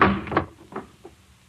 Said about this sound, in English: The General isn't exactly hospitable, slamming windows in people's faces.